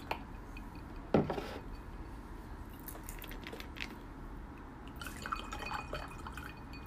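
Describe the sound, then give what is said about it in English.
Orange juice is splashed into a Crown Royal Peach drink, starting with a brief splash followed by soft trickling and dripping sounds at a low volume, with no one speaking. “Splash of orange juice.”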